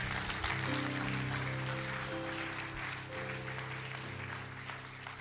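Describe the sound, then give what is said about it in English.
A crowd claps steadily and continuously for Jesus for several seconds, a dense, loud wash of applause, with sustained organ-like chords ringing underneath. “Clap for Jesus.”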